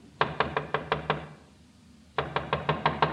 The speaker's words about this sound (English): Someone's trying the outside door.